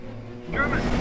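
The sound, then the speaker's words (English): A low rumble swells into a loud, rushing surge of churning water as a newly christened ship, the Apps family, is let go when the staves are knocked off and slides down a slipway into icy water. “Look, Dad, she's starting to move. There she goes.”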